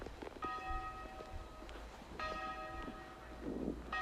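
tower bell ringing

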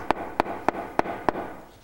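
knock

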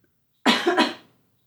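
dry cough

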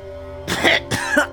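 coughing up water

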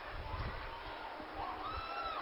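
football stadium crowd cheering

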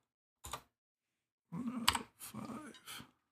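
clicky computer keyboard typing

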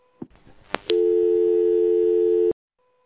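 answering machine beep

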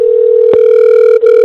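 telephone dial tone

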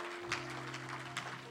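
audience hand clapping

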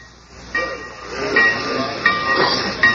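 train

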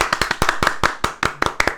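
small group applauding

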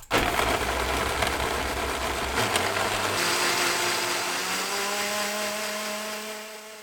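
blender blending soup

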